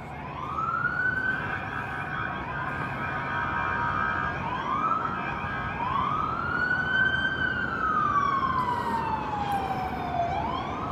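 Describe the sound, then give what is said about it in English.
Emergency vehicle sirens for a man hanging from the side of a building wail loudly and continuously, rising and falling in long sweeping tones over steady traffic rumble, with several overlapping siren pitches. “Oh, and make no mistake about it, those sirens were for him.”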